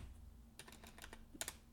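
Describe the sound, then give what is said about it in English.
Quick, uneven clicks of keys being typed on a computer keyboard as keywords are entered, fairly quiet, with a short burst of several strokes near the end and no voices. “Entering keywords now.”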